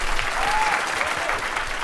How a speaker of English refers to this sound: Please join me one more round of applause for all of our guests.